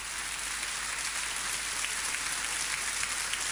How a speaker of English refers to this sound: I've got some applause here. You can have that, just some sympathy. Some sympathy applause.